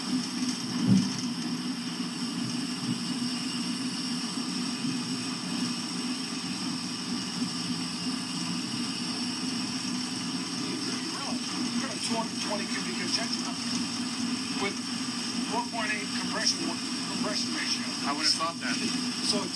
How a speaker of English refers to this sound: Kind of right on the cusp there. I hear a little bog in the engine, but not.